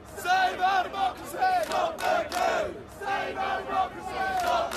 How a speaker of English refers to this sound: Yes, in fact, yesterday protesters gathered outside Parliament blocking traffic to protest Mr. Johnson's suspension.